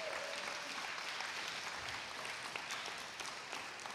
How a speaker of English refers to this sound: Come on, isn't that good? Come on, you should clap for that.